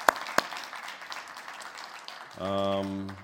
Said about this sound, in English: Before I ask any questions, a round of applause to the panelists. Thank you.